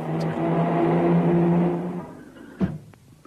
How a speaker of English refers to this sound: Oh dear! Oh, mummy! Willie has been knocked down by a car. Now Willie has been hurt.